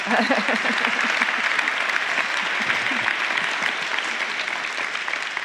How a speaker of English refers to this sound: The applause was not for you, Paul Kagame. The applause was for the fact that despite all of this, you have a sense of humor about this.